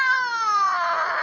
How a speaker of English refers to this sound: Hey, kitty, quiet. I'm on the phone.